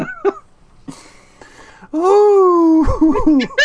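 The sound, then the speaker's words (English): A loud, wet fart sound effect played on a live Twitch stream, with a long drawn-out buzzing tone that sputters and splutters toward the end, ringing with a noticeable reverb tail after a few quieter noises. “Yeah, it is like a loud and wet fart. It's real good.”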